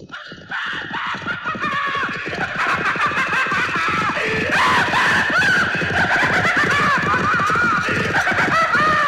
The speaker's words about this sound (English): A ghostly white stallion galloped across the countryside carrying a ghostly rider. From the black hollow at his severed neck, screaming his maniacal laughter, it was the Headless Horseman.